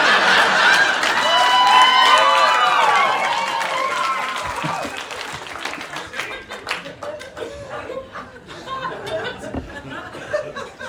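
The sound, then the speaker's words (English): An audience at a live show laughs and cheers loudly after the performer says he was once a drummer in a punk rock band, then breaks into applause that thins out into scattered, uneven handclaps over several seconds. “I was a drummer in a band, and by the way, more people clapped for that than we had fans then, so that felt pretty good.”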